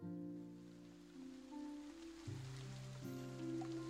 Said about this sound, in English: Rain is just continually dropping down from the sky because I forgot to put the rain sound effects. Can I find them? Let's do some heavy rain.